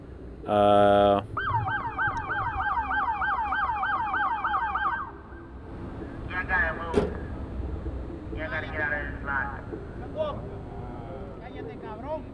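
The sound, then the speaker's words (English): A police car siren at a parking lot in the Bronx where muscle cars are gathered: a brief loud horn blast, then a fast, rhythmic yelping wail for several seconds, followed by quieter, intermittent warbling bursts over outdoor background noise. “The police lights started flashing before I could even put the mic in Dennis's face. The cops were here”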